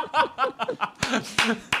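Short rhythmic chuckling gives way to a brief, ragged round of clapping from a few people, with several sharp claps landing unevenly before it stops.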